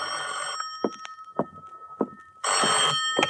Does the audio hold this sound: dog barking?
no